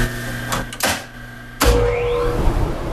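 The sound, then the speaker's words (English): A couple of mechanical clunks, then a workshop's sawdust collection system, a system of tubes sucking sawdust from the machines into big bags, switches on with a sudden loud roar and a whine that climbs in pitch as the motor spins up, staying steady and noisy. “That includes three different types of sanders and a system of tubes that suck all the sawdust from machines straight into big bags.”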